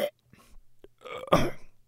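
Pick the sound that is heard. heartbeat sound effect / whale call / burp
burp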